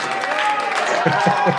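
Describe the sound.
A large, packed concert crowd at the Metro roars and claps in a steady, dense wash of noise, with a few louder shouted voices breaking through toward the end.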